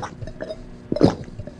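Water is poured into a glass in a brief gurgle, with a few soft plops leading to a louder splashy burst near the middle before it trails off.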